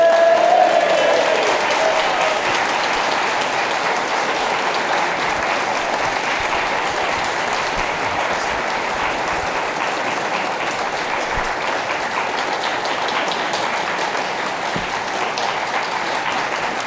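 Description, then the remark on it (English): A large audience applauds to welcome Tom Baker, steadily for the full stretch, a dense, loud wash of clapping that holds its level without fading, with a brief tonal note at the very start. “An equal round of applause for the equally delightful Mr.”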